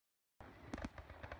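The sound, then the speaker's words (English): Fireworks burst in abruptly after a moment of silence, a loud barrage of crackling pops punctuated by a couple of heavier booms in quick succession. “2017 is beginning with fireworks. No, not those fireworks.”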